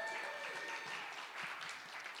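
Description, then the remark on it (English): A church audience applauds the musicians in a steady, dense burst of applause, a continuous crackling wash of many hands that holds at an even level for a couple of seconds with no voices over it. “So shall we give a round of applause to them?”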